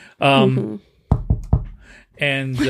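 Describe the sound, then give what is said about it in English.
Three sharp knocks on wood, added by a Foley artist, land in quick succession, loud, with brief voiced sounds just before and after them. “Knock on wood.”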